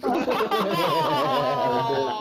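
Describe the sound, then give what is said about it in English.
A voice imitates an airplane taking off: a steady, loud, wavering whine that holds for about two seconds without a break. “Those are the airplane noises. When taking off.”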